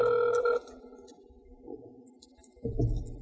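A phone ringback tone sounds once at the start as a call is placed during the Wrestling Mayhem Show, a steady electronic ring, then fades into quiet line hiss before a loud, low rumbling thump near the end.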